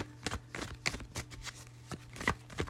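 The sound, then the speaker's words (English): A deck of cards being shuffled, a run of quick papery riffles and taps with crisp bursts and short pauses between them, quiet and with no voices. “without further ado, I will be shuffling the tried and true Terramucho”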